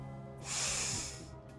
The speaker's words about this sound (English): Dick watched Gwen deeply contemplate every sniff of the homeless man's sleeve.